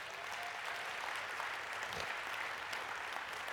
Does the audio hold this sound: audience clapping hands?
yes